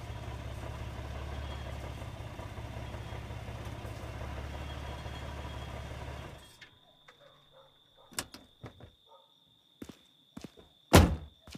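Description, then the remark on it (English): A car engine idles steadily for several seconds as the car arrives at a zoo, then cuts off, leaving a few soft clicks and rattles before a single loud door thunk near the end. “but luckily I have something he doesn't have. A car.”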